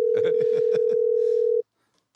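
A phone line rings out on an unanswered call with one steady, even-pitched ringback tone lasting about a second and a half, then cuts off into silence, with murmured voices beneath it.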